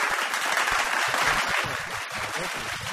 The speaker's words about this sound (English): Please, a round of applause again for Wayne Hope.